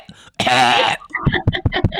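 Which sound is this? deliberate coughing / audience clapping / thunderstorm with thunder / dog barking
deliberate coughing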